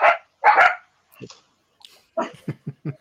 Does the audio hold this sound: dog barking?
yes